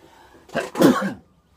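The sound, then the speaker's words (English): A single loud sneeze: a short sharp intake followed by a forceful, breathy burst that quickly fades into silence, with no talking. “I need to sneeze, and I may not, hang on.”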